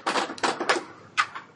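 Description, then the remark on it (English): Dice rolled for damage in a game clatter across a hard tabletop in a quick run of rattling knocks, then a couple of final taps as they settle. Fairly loud, with no voices. “So now roll for damage.”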